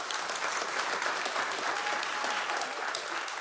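A crowd claps steadily, a dense wash of many hands with no breaks in the rhythm, holding at an even, fairly strong level throughout.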